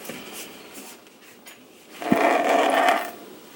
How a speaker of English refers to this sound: Okay, I'm going to take the lime and I'm going to squeeze a little in here.